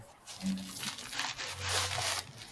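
Paper is crumpled up while someone puts on a sneaker, a steady run of dry, irregular crinkling and rustling lasting a couple of seconds, with a faint low hum underneath.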